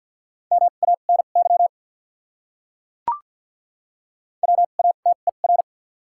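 Morse code beeps at 50 words per minute with doubled character spacing, in a steady mid-pitched tone, two quick bursts of short and long dits and dahs separated by a pause, with a single brief click between them.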